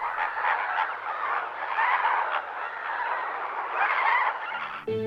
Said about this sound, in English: Those are flamingos. Yep, those tall skinny birds.